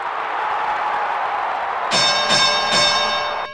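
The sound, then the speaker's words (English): A bright metallic opening bell for the show Opening Bell dings three times in quick succession, ringing out over a steady murmur of crowd noise that fills the background throughout. “This is the first ever Opening Bell.”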